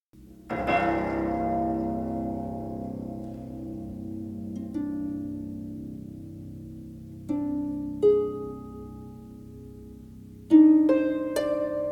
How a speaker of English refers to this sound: Like there's one piece a composer wrote for me where I take honey dipper spoons and I wedge them between the strings. Then I use a marimba mallet to then tap the spoon, and it makes a really interesting watery gong sound.